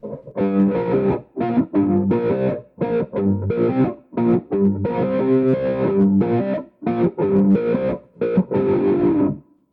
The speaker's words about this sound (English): So now we'll throw on the phaser with chorus.